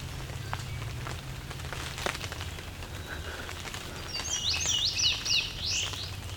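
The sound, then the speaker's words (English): Irregular patter of water drops blown off the trees by the wind, scattered taps over a steady low wind rumble, with a bunting's high, bright song rising in the last two seconds. “Some water drops being blown off the trees.”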